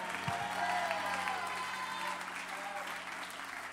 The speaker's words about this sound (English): In Jesus' name, clap your hands one more time and give him a shout of praise tonight.